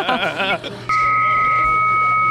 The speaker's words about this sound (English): Morse code. I love it. Really? Oh, my God. That's fucking good. Yeah. No, it is not. Okay, you got to give us some credit. That's hilarious. Oh, the static. Who remembers using that?